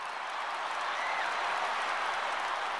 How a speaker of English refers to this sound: The roar of the crowd was out of control when Louise rolled into the stadium.